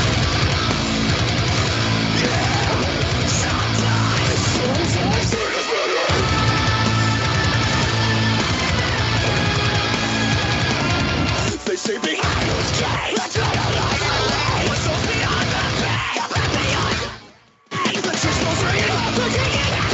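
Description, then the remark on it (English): A loud, dense heavy rock song with screamed vocals over distorted guitars and rapid pounding drums, broken by a few abrupt stops before crashing back in. “And anyone listening who doesn't know, it does start very heavy, so be prepared for that.”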